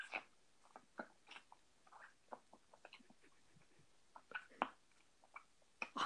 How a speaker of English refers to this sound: Those are some very nice chewing sounds.